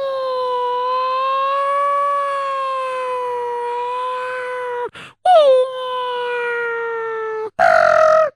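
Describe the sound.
A voice imitates a 1952 police car siren with a long, steady wailing tone, breaks off briefly, then swoops back in and holds again before ending in a short, rough, noisy burst.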